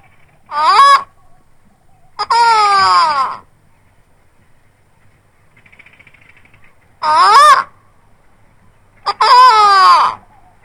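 An eagle gives four loud, harsh, ringing calls, spaced irregularly with quiet gaps between them, some short and some drawn out, clear with no talking.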